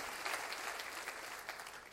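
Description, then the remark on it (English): An audience claps hands for God's grace during a sermon in steady, dense applause, many overlapping claps forming a continuous wash that holds at an even level throughout. “Come on, let's clap our hands for grace one more time before I go further.”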